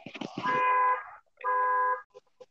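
A car alarm on someone else's car outside sounds in two steady, buzzy blasts, each about half a second long and separated by a short pause, after a few brief clattering knocks.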